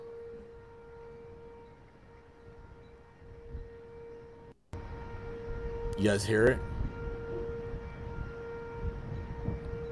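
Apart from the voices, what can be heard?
tornado warning sirens wailing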